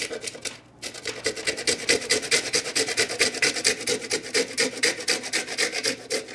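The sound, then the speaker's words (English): Fresh cinnamon is grated on a microplane in a steady run of quick, scratchy rasping strokes, several per second, bright and fairly loud, after a brief pause at the start. “So we're gonna hit it with a little bit of fresh cinnamon as well. Making it rain with the microplane.”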